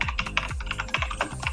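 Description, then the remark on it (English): Rapid, continuous clicking of keys on a computer keyboard as someone signs up for the Winamp beta testing program, fairly loud, with irregular bursts of keystrokes and a faint low hum underneath. “I can hear you typing.”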